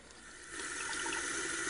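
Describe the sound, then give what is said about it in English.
Running tap water splashes steadily into a sink as someone washes their hands, a broad hissing rush that swells in volume after the first half second as hands move under the stream. No voices are heard. “Hold your horses, Sammy. I've got to clean my hands.”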